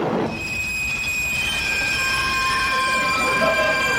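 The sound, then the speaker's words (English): A train pulls into a station, its wheels and brakes letting out sustained high-pitched squeals over a heavy, steady rumble, loud throughout. “as this train just pulled into the station.”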